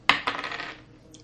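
Dice clatter onto a hard table: a sharp first hit, a second bounce, then a short rattling roll that fades out within a second. Fairly quiet, with no voices.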